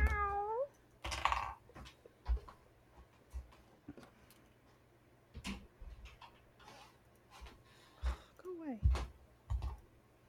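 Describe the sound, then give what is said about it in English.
A cat that has just come in through a door meows, a rising harmonic cry at the start and another near the end, with scattered clicks and tapping sounds in between and faint background noise. “I have to close my door because a cat came in.”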